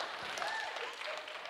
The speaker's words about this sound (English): Very weak clap, but I understand. No, I understand.